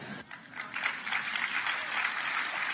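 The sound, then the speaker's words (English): Sustained applause from a large audience for the Vice President's speech on protecting the right to vote, a dense, steady wash of many hands clapping at once that swells slightly and holds loud throughout, with no voices standing out. “Massive applause.”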